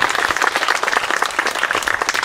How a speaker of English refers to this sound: So what a big round of applause.